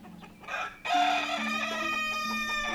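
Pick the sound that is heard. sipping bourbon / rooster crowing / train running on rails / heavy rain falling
rooster crowing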